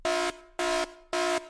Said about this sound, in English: Oops, there goes the dad joke alarm.